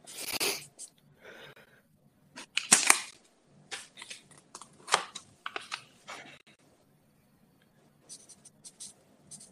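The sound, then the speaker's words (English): A fork thrown by a man at a woman strikes her with a sudden sharp thud, standing out among scattered scratchy rustles and light clattering handling noises. “He zinged that fucking fork at her. Man, I could hear the thud too.”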